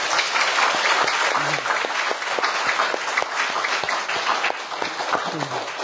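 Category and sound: crowd, audience applause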